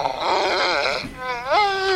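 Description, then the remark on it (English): A dog calling its owner on FaceBark, a phone device for dogs, whines and yelps in two loud, high-pitched bursts, its voice sliding up and down in a whimpering, pleading way, with no one talking. “So if your dog suffers from separation anxiety, it can check in with you whenever it's lonely.”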